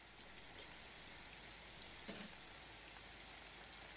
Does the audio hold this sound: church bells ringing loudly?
no